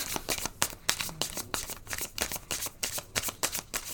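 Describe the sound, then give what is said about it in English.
Tarot cards being shuffled, a steady run of crisp papery slaps and riffles repeating in quick irregular bursts, with no voices. “Watch us sit here for 20 minutes just shuffling cards.”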